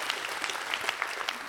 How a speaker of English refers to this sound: And yeah, let's applaud for good and long marriages, huh?